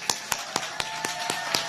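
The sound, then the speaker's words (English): A brief round of applause for children who had received their vaccine shots: crisp, evenly spaced claps, about seven in under two seconds, in a steady rhythm over a faint constant hum, with no voices. “So let's give a round of applause to all the brave kids here who got their shots.”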